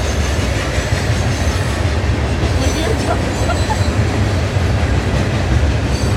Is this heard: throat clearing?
no